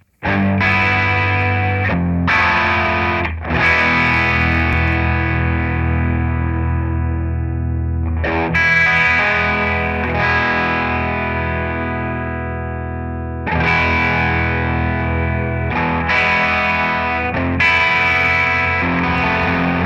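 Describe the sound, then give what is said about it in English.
An electric guitar played through digital chorus and distortion plays loud, thick distorted chords with a shimmering chorus effect, strummed hits ringing out and sustaining between attacks, with no talking. “Speaking of which, let's try the chorus with the distortion.”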